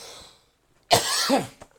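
A person coughs: a soft breath, a pause, then a harsh, rasping cough lasting about half a second, followed by a short final hack. No speech.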